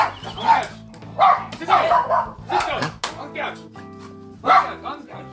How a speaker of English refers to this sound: The dogs are going nuts.